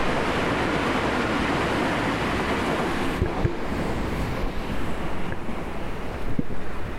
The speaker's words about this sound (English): And once again, I'm outdoors. Back behind some buildings next to a train station. There goes the train right now.